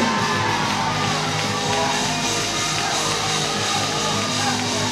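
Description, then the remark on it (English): A large crowd shouts and cheers in praise to God, with overlapping yells and whoops forming a loud, dense roar that holds steady throughout. “This may be the praise that you need. This may be the shout that you need to get out of your present situation.”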